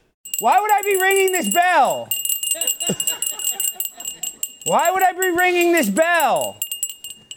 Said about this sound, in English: Why would I be ringing this bell?